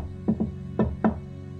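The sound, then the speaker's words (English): Four knocks on a first-floor door of an apartment complex in a distinctive pattern: two quick raps, a short pause, then two more spaced raps. Solid and fairly loud with a woody thud, no voices. “He walks up to one of the doors on the first floor and raps on the door with a unique knock.”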